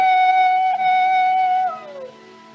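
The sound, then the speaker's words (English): A coyote howls in one long, high, steady note that bends downward and fades near the end. The call is fairly loud and clear, with no talking. “Coyotes give me the creeps. It sounds, well, it sounds just like a baby.”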